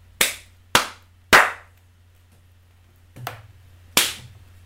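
Three sharp, loud hand slaps, given as a rating for a dance video, land in quick, even succession, followed after a pause by a softer slap and one final crisp smack, with no voices.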